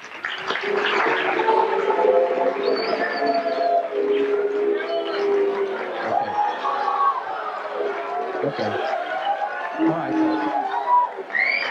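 A studio audience erupts in a loud, sustained reaction to a man having just told his wife he was unfaithful with their babysitter, many overlapping voices oohing and booing with long rising and falling howls that continue without a break for about twelve seconds.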